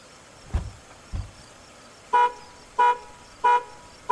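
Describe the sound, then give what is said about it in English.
A couple of dull thumps, then a tripped car alarm starts honking: four loud horn blasts repeating in a steady, evenly spaced rhythm with no talking. “I tripped the alarm.”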